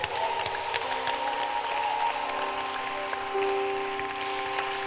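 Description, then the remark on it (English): An audience claps steadily for about five seconds to welcome a singer, a dense, even patter of many hands, with a few sustained musical tones humming faintly beneath it. “At this point, shall we clap our hands”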